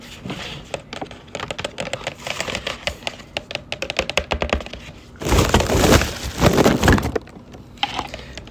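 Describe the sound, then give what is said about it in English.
Crunching on a dark-meat chicken bone: a run of sharp, dry cracks and snaps, followed by a louder, denser burst of grinding crunches lasting about two seconds before fading back to scattered clicks. “It's just chicken bone.”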